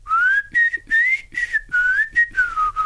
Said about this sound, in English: Remember? Yeah. So he whistled. So yeah. It must be cool. Okay, so we know he whistled.